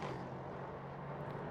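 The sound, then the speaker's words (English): The V8 engine of the number 36 Andretti Autosport race car, driven by John Andretti, roars steadily and loudly for a brief moment as it passes, a dense, continuous mechanical drone with a low humming tone and no voices. “It's the number 36 that goes through underneath me now for Andretti Autosport, and John Andretti down into turn one.”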